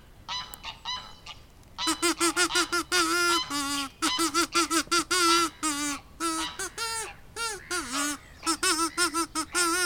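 A burst of buzzy, nasal kazoo notes plays a short fanfare: a few soft toots, then a loud run of rapid, choppy blasts at a steady pitch, prominent, with no talking.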